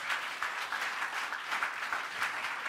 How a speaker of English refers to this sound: Go ahead if you are clapping.